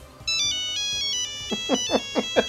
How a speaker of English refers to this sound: Old Nokia ringtone.